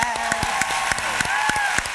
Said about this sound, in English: Give claps for everybody in the room that wrote a question.